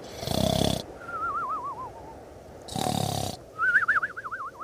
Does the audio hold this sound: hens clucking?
no